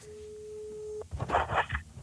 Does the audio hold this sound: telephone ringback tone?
yes